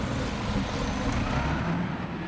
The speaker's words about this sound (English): walking with me downtown, and what he just said was, those are some nice bus sounds. He points the mic at the bus, you know, the blimp on the stick, and we stand there for a bit.